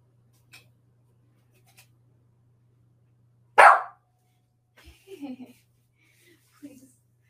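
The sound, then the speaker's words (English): A single loud, sharp dog bark, followed by a brief pause and then a person speaking quietly in short bursts. “Please. No more barking.”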